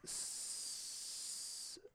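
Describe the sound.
A person hisses like a snake in one long, steady breath lasting nearly two seconds, loud, then stops abruptly; no talking alongside it.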